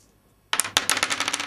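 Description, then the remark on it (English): Dice clatter across a hard tabletop as players roll for a prowl roll in a game, a burst of sharp rattling clicks that starts abruptly after a moment of quiet and keeps tumbling rapidly, fairly loud, with no voices. “To roll the number of dice equal to the dots you have next to the word prowl on your sheet.”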